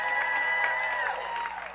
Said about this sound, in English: How many of you have ever been at one of our baptism services? Am I right when I say that? Can you give those that are a little nervous a sample of your cheering for them?